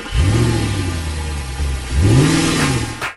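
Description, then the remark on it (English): A bus's large engine turns over and revs up loudly twice, the pitch climbing and falling with each surge of the throttle before cutting off abruptly, without any talking. “So let's fire up the bus as Bennett Woods takes you on the Tier 1 tour of baseball spring training camps.”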